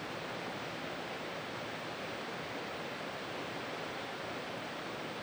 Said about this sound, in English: Just get a moment of silence? Because I haven't heard rain in so long. Yeah, let's listen. I just want to listen to it.